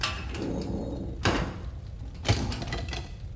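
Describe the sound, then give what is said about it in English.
A jailer shuts a door with a solid thud, followed about a second later by a second sharp clunk as it is locked, against a low background rumble with no voices. “Close the door, jailer. Be quick. Lock it and listen out for me.”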